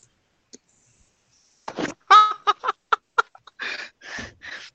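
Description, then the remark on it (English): Dice clatter across a table in a quick run of sharp clicks and knocks as they are rolled for an attack, followed by a few softer rattling bursts as they settle, with a brief voiced squeal mixed in. “he tripped on the rocks. Either it was a nat 1 or a nat 20.”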